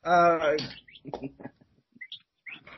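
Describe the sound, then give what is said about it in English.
A bird calls with a loud, buzzy squawk, then gives a few short, high chirps scattered over the next couple of seconds, with murmuring voices in between. “The bird that's chirping in the background is telling you to pick Private Party.”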